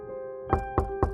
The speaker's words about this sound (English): It was not long before someone knocked at the house door and called.